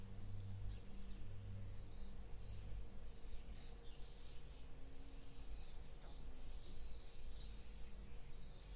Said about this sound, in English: In the same way that there are birds outside my window in the tree singing and making all those beautiful sounds. It's a fact, they are there.